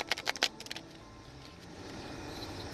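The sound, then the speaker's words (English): A quick riffle of a deck of tarot cards being shuffled before three cards are taken off the top for a reading. A brief burst of rapid, crisp flutters fades into quiet hiss, with no talking. “I'm shuffling now, and I will take the three cards off the top to kind of give me an idea of the storyline”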